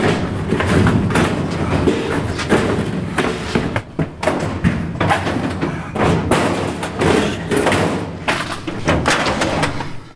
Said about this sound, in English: One of the filing cabinet drawers was stuck and wouldn't open.